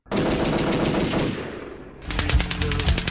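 A loud, rapid volley of gunshots cracks out in quick succession, then after a brief roar of echo a second fast burst of automatic fire rattles on. No voices are heard.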